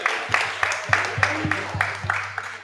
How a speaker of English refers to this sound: Are we going to clap it up for Dad? Clap it up for Dad.